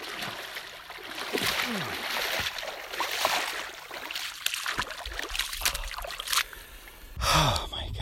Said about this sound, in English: You can actually drive up to the river, which is one of the few places that you can do that in canyon country. And it's where a lot of Grand Canyon River trips launch from. And I decided, because it was so hot, I would just go for a swim.